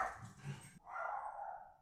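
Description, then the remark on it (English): A small dog of about 8 pounds barks: a rough, sharp bark followed by a drawn-out, high-pitched yappy whine. There is no talking. “If I weighed 8 pounds, if I weighed that much, I wouldn't be barking and yelling at people.”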